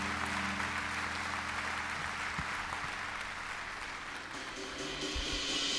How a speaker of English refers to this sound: Let's give the Lord a clap offering of praise, and let's worship.